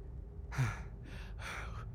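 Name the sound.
imitated heavy breathing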